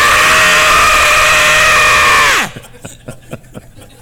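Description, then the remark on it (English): A person lets out a loud, steady, high-pitched mock scream held for over two seconds, which collapses into a quick downward pitch slide, followed by faint scattered clicks. “Instead of falsetto, that's the false screamo.”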